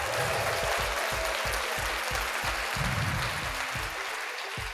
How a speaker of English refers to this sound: So we give Joel Matip a round of applause.